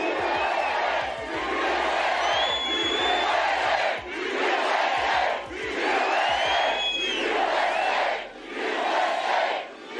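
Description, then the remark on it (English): A large rally crowd in Minden roars and chants "USA" in steady, repeated bursts, loud throughout, with high whoops and whistles rising over the rhythmic shouting. “Nice, big, beautiful crowd.”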